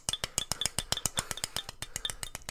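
A glass bottle clinks over and over for a toast in a quick, steady run of sharp, bright taps, each with a short high ring. The sound is fairly soft, and no one speaks.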